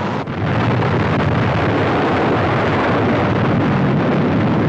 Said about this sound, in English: Fire followed the explosion.